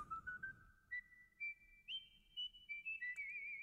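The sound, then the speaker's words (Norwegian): A person whistles a slow, steady tune alone, each note held in a clear tone that steps gradually higher, with a few brief breaks between phrases and a faint low hum beneath. “Vi kjører plystring og så utenriks.”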